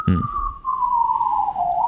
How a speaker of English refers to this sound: So, as I'm hearing these the sirens in the background